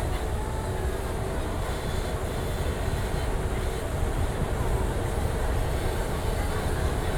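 A theme park tram rolls steadily along, its low continuous rumble and rattling wheel noise filling the whole stretch without pause, fairly loud, with no voices.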